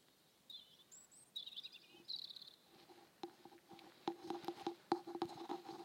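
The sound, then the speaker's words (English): A pigeon flies past, its wings flapping in a quick run of soft, fluttering beats that grow louder toward the end, after a few thin chirps in the background. “Pigeon flies past.”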